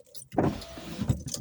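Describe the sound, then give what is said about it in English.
A car's power window motor whirs steadily for about a second as the glass rises, ending with a soft thump as it seals shut, heard inside the vehicle. “So let me make sure my windows are closed before I officially end this episode.”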